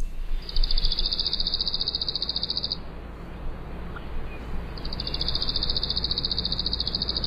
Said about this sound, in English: And finally, a song that starts softly and gets a little bit stronger from the worm-eating warbler.